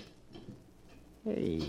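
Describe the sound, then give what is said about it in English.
A locksmith's emergency kit of skeleton keys and lock picks in a heavy leather case is rummaged through, making faint, scattered metallic clinks and rattles before a voice abruptly starts talking. “Hey, this kit's full of skeleton keys and pick locks and stuff.”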